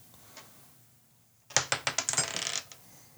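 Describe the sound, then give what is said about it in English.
Dice clatter across a hard surface in a quick burst of sharp, bright clicks and rattles that tumble for about a second before settling. No one speaks, and low hum sits underneath. “All right, what do I have to do now? Roll, right?”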